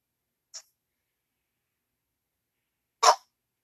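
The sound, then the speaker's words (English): A dog barks twice with a long pause between: first a faint, clipped yip, then a louder, sharper bark a few seconds later, with silence around them. “Dog.”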